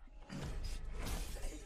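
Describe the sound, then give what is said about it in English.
Glass shatters in a fairly quiet, sustained crash of tinkling, scattering shards lasting under two seconds, with no voices present. “Did he just shatter like glass? Like a light?”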